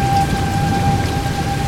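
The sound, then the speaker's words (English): Heavy rain from a thunderstorm pours down in a dense, steady roar with a low rumbling undertone, and a faint, steady high tone hums faintly behind it. No one speaks. “The intensity of the storm is what I find so fascinating.”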